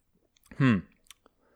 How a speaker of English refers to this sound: You know, I grabbed a couple of sips there.